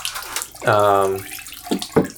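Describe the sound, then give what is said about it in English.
Film developer pours steadily out of a small film developing tank, a hissy gurgling stream lasting a couple of seconds, with a brief spoken word over it partway through. “I get a little nervous at 10 seconds because I start pouring out at like 10 seconds.”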